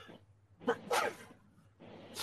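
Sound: sneeze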